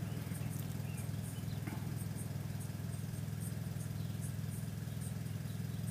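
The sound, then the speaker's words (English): A car that has just pulled up idles nearby with its engine running, a steady, loud low rumble joined by faint rhythmic ticking. The sound holds unchanged for the whole stretch, and no one speaks. “Wasn't noisy until this fucking car pulled up over here.”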